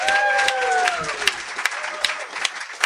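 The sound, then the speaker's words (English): An audience at the Investor Summit at Sea claps loudly and steadily for Tom Hopkins with dense, crackling applause, while a few gliding whistles or cheers fall in pitch during the first second before the clapping thins out. “How about a hammer, Tommy Hopkins?”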